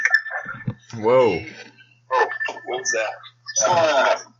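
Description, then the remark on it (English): A phone rings with an incoming call from Mike Hurley, its ringtone playing in several bright, melodic bursts with short gaps between them, clear above a low steady hum. “Hey, you guys, I got a guest appearance on the phone right now.”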